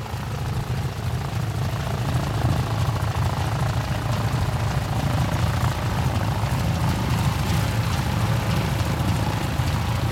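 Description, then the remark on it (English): A loud Stearman propeller biplane drones past, its deep rumbling engine and airscrew throb filling the whole recording steadily with no talking. “We've paused our chat for a second because there's a steerman going past and you really can't talk over it.”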